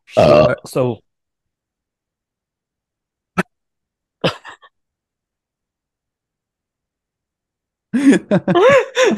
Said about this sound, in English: Excuse me, I just burped.